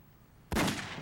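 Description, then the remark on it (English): A single loud movie gunshot sound effect cracks out halfway through, a sudden blast of noise that lingers with a rough, reverberant tail until the end, with no voices. “Bang. Nice sound effect that was.”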